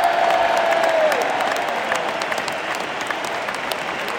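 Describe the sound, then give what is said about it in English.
A stadium crowd cheers and applauds for Manchester United player Ander Herrera, number 21, a dense, steady roar of clapping and voices holding loud for the whole stretch, with a brief whistle near the start. “Well, you heard that cheer for Ander.”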